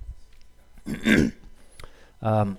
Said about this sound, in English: sorry, I had like a small annoying cough. So I'm having a cough drop.